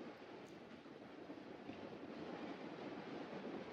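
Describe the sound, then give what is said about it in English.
Steady, dense hiss of heavy rain pouring without a break, a broad rushing wash of sound that stays even in loudness throughout, with no voices. “I don't know if you lot can hear it. I'm sure they can.”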